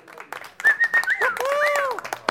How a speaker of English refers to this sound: Order! Hey, come on, order. You're right to cheer for scorpions.